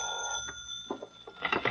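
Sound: telephone ringing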